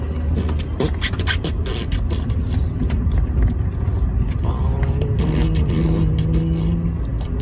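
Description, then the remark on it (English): Steady roar of road traffic, with trucks and cars rumbling and whooshing past, a heavier engine hum rising partway through, and faint voices murmuring underneath. “Oh, that's the car people. Damn, what trucks and shit.”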